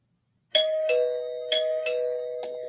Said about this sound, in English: The doorbell rings.